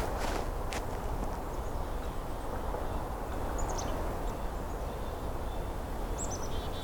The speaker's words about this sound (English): Stepping into a small woodlot now. Hearing black-capped chickadee.